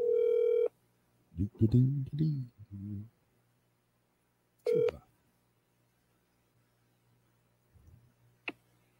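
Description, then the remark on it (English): A phone line rings out in two steady, buzzy tone bursts several seconds apart, with a voice speaking briefly in between over a low electrical hum, then a sharp click. “Come on, answer, asshole.”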